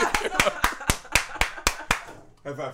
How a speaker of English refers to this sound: High five.